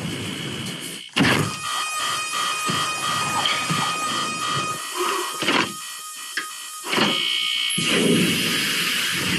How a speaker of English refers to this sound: That's a lot of alarm sounds. Yeah. Oh, lordy. And they all kind of sound the same.